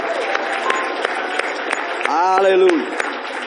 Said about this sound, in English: Come on, give Jesus one more hand clap of praise.